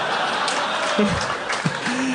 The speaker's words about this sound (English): Some like spine surgeon just booed you. Chiropractor, boo.